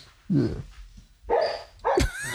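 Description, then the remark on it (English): A dog named Zeus, having a bad dream in his sleep, gives three muffled, whiny woofs spaced about a second apart, sounding like sleepy barks mixed with whimpering, with no talking. “Is he having a bad dream?”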